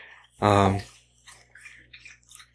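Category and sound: animal, dog lapping water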